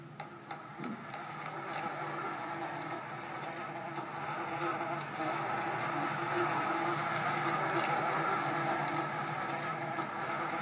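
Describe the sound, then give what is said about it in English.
A steady, dense buzzing drone fills the whole stretch, holding at a fairly even loudness with a faint rhythmic flutter and no voices: a video game cue humming continuously that marks piles of ammo. “The buzzing that you're hearing are, piles of ammo.”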